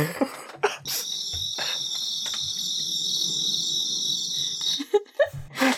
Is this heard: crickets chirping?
yes